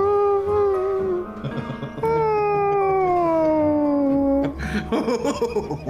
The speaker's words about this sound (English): Meow. He's a cat. He's a cat.